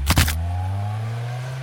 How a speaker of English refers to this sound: Now, she was scared, as any of us would be, so she jumped back in her car and started it. And as she pulled away, this creature jumped onto the back of her trunk.